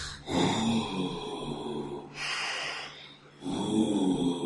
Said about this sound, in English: But you hear heavy breathing from the cave. Huh? Heavy breathing.